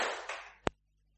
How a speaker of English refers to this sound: And what I'm going to do is when I count to three, okay, I want you to make one giant clap. Ready? Here we go. One, two, three.